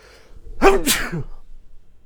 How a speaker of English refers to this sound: Oh, I'm going to sneeze.